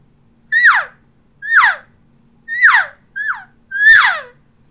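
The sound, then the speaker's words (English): Five elk cow mews blown on a brand-new Pitch Black 1 series reed call straight out of the package, each a short, nasal, high-pitched whine that slides downward, sounded alone at a steady pace with brief pauses between. “It's a brand new reed, and this is what it sounds like. This is a cow sound right out of the package.”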